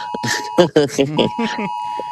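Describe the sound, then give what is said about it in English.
A steady, piercing electronic Amber Alert tone from a phone, warning about the windy weather outside, drones continuously throughout, holding one pitch while a person talks over it in the foreground. “We're gonna get an Amber Alert coming through my phone now as you were talking, because it's warning me about the weather outside.”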